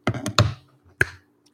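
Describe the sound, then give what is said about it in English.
Four crisp finger snaps with no one talking: three come in quick succession, then a short pause before a single, slightly fainter final snap. “That was a snap.”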